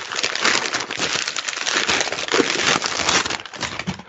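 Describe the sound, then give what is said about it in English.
Wrapping paper crinkles and rustles as a roundish gift is unwrapped, a steady, busy crackling that keeps going for several seconds with no one talking. “Open up the other little gift. Okay, the roundish one. The one I like the way it's wrapped.”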